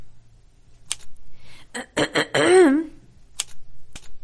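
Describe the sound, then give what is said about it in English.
Sharp, clacking typewriter keystrokes strike one at a time at an uneven pace in an office, fairly loud, with a brief voice sounding in the middle of the run. “Do you work here, or are you just testing the typewriter?”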